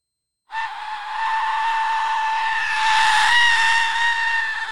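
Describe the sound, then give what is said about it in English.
A single piercing, shrieking blast from an Aztec death whistle, a skull-shaped whistle, loud, holds a harsh, rasping tone for about four seconds, like a human scream, with no talking. “So I'm going to give you a quick, try not to blow out the microphone, a quick example of the Aztec Death Whistle scream.”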